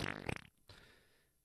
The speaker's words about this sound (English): Well, guys love to fart. Oh, that's what I'll do. I'll go tell him I farted.